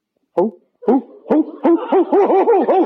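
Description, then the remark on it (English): A man's voice imitates an owl, starting with a few separate hoots and then running into a quick, rhythmic series of wavering, bouncing hoo-hoo calls, fairly loud. “What are you hooting like an owl for?”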